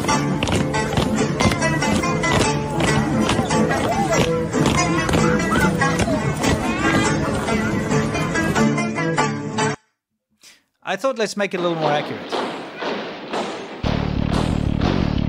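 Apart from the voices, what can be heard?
footsteps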